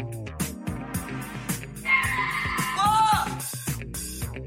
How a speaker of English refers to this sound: Cow.